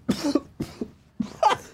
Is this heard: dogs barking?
no